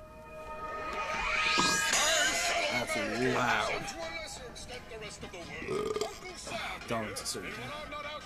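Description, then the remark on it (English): A long, loud, drawn-out burp rumbles after drinking Code Red soda, stretching over several seconds with gurgling pitch changes, while people talk and react in the background. “It's funny that I usually don't burp when I drink soda. But for some reason, this Code Red is just.”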